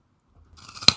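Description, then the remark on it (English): Crunching of a baby carrot: after a moment of quiet, a quick flurry of crisp, brittle chewing builds to one loud, sharp snap, then fades. No voices. “And now, a live looking into baby carrots versus tortilla chips.”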